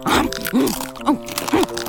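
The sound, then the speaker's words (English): Repeated loud crunching and chewing as Wonder Cow, a cartoon cow, crunches on ice cubes, several bites in quick succession of hard ice being bitten and ground, with faint voiced sounds woven between the crunches. “To their surprise, Wonder Cow began to crunch on ice cubes.”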